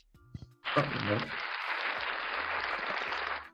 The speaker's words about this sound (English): Y'all like that? Y'all like that? Yeah, where the hand claps at?